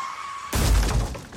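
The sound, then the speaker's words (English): A car crash erupts suddenly outside after a faint steady whine: a heavy, booming impact mixed with loud shattering glass that clatters and rings for about a second before trailing off. “Make a car crash outside.”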